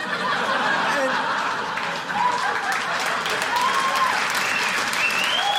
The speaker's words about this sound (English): No, don't clap for that.